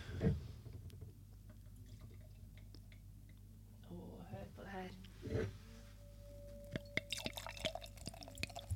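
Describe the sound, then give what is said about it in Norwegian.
Sparkling pét-nat wine made from 100% Pinot Noir is poured, with gurgling splashes and soft drips, then a bright, crackling fizz of foaming bubbles rises in the glass, quiet but steady over a low background hum. “Deilig skumlyd.”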